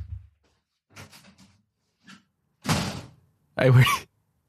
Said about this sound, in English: I just really scared the dogs by slamming the door there. Jesus Christ. I genuinely thought you got up and went out the door. I just got up and slammed the door.